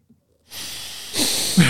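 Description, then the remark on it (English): Nasal sniffing of whiskey right at the microphone: a long, steady breathy inhale followed by a louder, sharper sniff, airy and hissing with no talking. “I'm trying to get the nose sound of me sniffing.”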